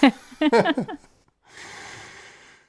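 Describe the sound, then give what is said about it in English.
A few short, shaky voiced sounds give way to a long, breathy sniff drawn in through the nose, fairly soft, like someone sniffling while emotional. “How much emotional do the listeners want to listen to sniffling for the next half hour? I think sniffling's okay.”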